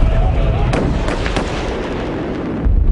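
gunshots fired

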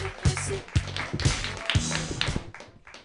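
audience clapping hands

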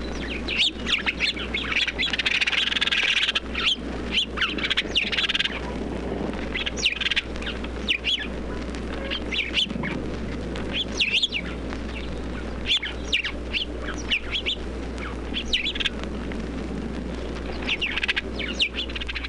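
house sparrows chirping

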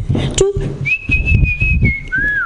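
person whistling a tune

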